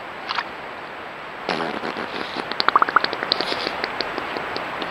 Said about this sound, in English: Well, you know that age-old question, do beavers yes. fart in the woods? Well, we have proof. Here you go.